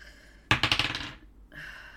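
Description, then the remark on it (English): Homemade dice, rolled for a random encounter in a tabletop game, tumble onto a hard surface with a sharp clatter, a quick run of bouncing clicks that fades out within about half a second, fairly loud against quiet background noise. “I have these really nice, homemade, like, beautiful dice, and I can't fucking ever read them.”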